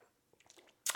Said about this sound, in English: Sip my beer.